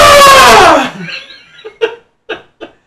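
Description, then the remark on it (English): A man in intense pain across the whole left side of his body lets out a loud, strained cry of pain lasting nearly a second, followed by a few short, quieter pained groans or gasps. “I'm screaming in pain.”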